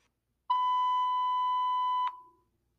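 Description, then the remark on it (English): A clothes dryer gives one long, steady electronic beep at a mid pitch, lasting about a second and a half, then cuts off with a faint click and fades. No one speaks. “And I apologize because I just realized that I started my dryer in the midst of me recording this video.”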